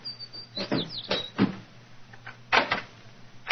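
A door is pulled open with a short squeaky creak of the hinges, followed by a few clunks and rattles of the latch, with no one speaking.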